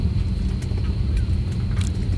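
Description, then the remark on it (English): A steady, deep engine rumble drones on without a break inside an airplane cabin, just after boarding, on a flight back to Los Angeles, with a constant hiss above it and a few faint clicks. No one speaks. “So now, just got on the plane.”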